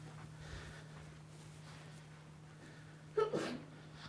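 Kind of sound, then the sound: human body sound, sneeze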